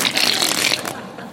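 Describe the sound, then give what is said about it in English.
A quick, dense riffle of playing cards being shuffled in an air shuffle, a bright papery flutter lasting under a second before trailing off, with no talking. “Air shuffle, except it's not supposed to shuffle. If it's an air shuffle, I'm actually doing it wrong.”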